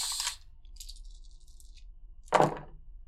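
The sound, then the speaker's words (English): Six dice are rolled for damage: the handful rattles briefly, then small scattered ticks follow before a sharper clatter as they land on a hard surface, fairly quiet, with no one talking. “So you got seven dice, I think. Yeah, six dice. Yeah. So let's roll damage.”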